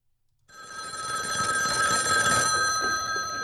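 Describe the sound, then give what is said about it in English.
A telephone rings continuously after a brief half-second of silence, a loud, steady, bright electronic trill with shimmering high tones that holds without pause. No one speaks. “Since we said calls, I'm going to give you my last one.”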